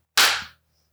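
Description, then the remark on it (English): One loud, sharp hand clap made for audio sync at the start of a recording stands alone, cracking suddenly and then fading over a brief ringing tail into quiet, with no voices around it. “Raise your clap sync in 3, 2, 1.”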